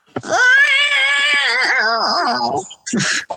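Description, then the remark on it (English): A long, drawn-out cat yowl with a wavering, whining pitch, loud, followed by a brief second cry. “Yeah, do all these cat noises attract the humans that are inside to come outside?”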